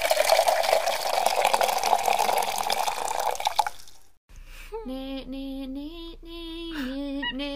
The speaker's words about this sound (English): That being said, not drinking coffee today, drinking bubbly water, getting our hydration in, and giving us our bubbly fix.